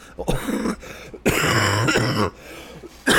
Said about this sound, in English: Sorry, did you hear that? Now, normally I would cut that out, but I'm going to leave that in because I'm going to tell you what the fuck that's all about. I know I'm sniffling, whatever. I didn't mean to cough in your ear, and I apologize.